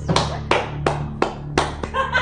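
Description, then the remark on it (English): People clapping in a slow, steady rhythm of sharp, loud claps, roughly three per second, turning busier and more scattered toward the end over a faint low hum. “I don't know if I'm gonna clap for this or not.”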